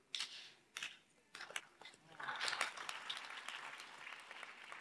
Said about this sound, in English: Yeah, some people are just clapping, but yes, still clap.